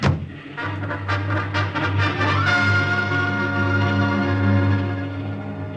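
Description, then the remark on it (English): A motorcycle engine drones steadily and then revs up, its pitch rising, while a rapid series of sharp gunshots cracks over it in the first couple of seconds, fired by Nazis from a car at the motorcycle rider during a ride through enemy-held territory. “That motorcycle ride through enemy-held territory with that car full of Nazis firing at me”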